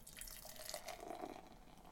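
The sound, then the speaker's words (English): A steady stream of golden beer pours into a glass, a soft fizzy gurgle with bubbly trickling, fairly quiet, with no voices. “I'm going to pop this top. Ah, it's up. Nice. And the pour.”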